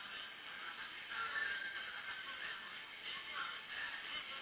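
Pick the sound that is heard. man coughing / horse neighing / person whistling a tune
horse neighing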